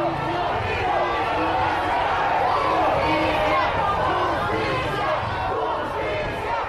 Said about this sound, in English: Massive crowds of cyclists and pedestrians marched down a main thoroughfare. There's so many of them that they can only walk at a snail's pace. Some of them carry white roses. They chant, "Justice."